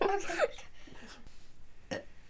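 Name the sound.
burp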